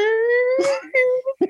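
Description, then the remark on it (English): A voice mimics the hockey-goal-horn-style alarm used at a Macaroni Grill restaurant, holding a loud, steady, buzzy tone for about half a second before breaking into a breathy burst and a few short voiced yelps. “Just a hockey goal thing.”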